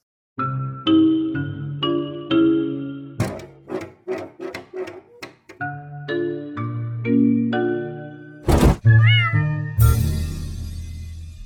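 A cat meows over and over in short, tonal cries, with a quick run of sharp taps in the middle and a rough, noisy burst at the end; no one speaks.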